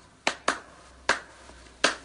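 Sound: a single clap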